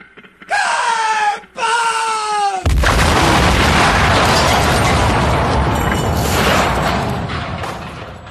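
A short theme sting: two rising, wailing synth sweeps, then a loud, booming explosion that roars broadly and slowly fades over several seconds. No talking.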